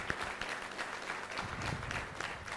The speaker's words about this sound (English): Let's give our television audience and our first-time guests a big, huge round of applause.